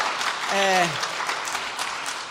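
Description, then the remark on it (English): A crowd claps steadily in a dense, even patter of applause, with one short falling whoop of a cheer rising above the clapping early on. “Yeah, let me first of all, just let's just applaud”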